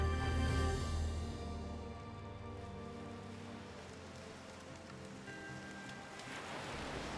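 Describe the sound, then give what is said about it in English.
A steady, hissing wash of ocean waves fills the scene, with a low musical drone fading out early on. No one speaks, and the surf rolls on at an even, moderate level. “Staring out at the ocean, we hear the fire behind us crackle and pop.”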